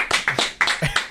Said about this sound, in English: The scant applause.